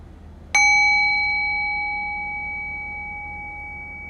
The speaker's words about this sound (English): I'll ring the sound of the bell. So the invitation there is to rest awareness on the sound of the bell. Allow the fading bell to guide your awareness into silence.